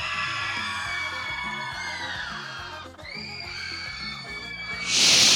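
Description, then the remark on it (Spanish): An audience at a contest cheers for couple number two with shrill, sustained whoops and screams over a thumping music beat, then breaks into a loud burst of clapping and noise at the very end. “El aplauso para la pareja número dos.”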